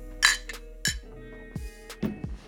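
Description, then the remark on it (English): Wine glasses clink together in a toast several times in a quick, irregular series of bright, ringing taps, fairly clear, with no talking over them. “All right, cheers, dudes. Cheers up.”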